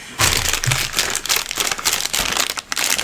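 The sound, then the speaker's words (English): Loud crinkling and crackling of a package with a lot of bubble wrap being crumpled as someone tries to open it, with dense irregular snaps and rustles that run for about three seconds with no voices. “Yeah, you're just crumpling it up. You're not even trying to open it.”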